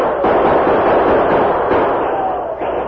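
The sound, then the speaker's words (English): Loud, dense gunfire crackles almost without pause amid a roar of yelling voices as a horde of attackers moves in on a camp from all sides, forming a steady wall of battle noise that barely lets up. “Sonny, them not try hit us with bullets.”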